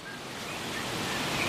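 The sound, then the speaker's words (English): A steady, roaring rush of wind thrashing through tall rimu trees on Coal Island in Preservation Inlet, a broad hissing wash that swells slightly louder over the moment, with a few faint high bird chirps barely showing through. “It's a windy day on Coal Island in Preservation Inlet.”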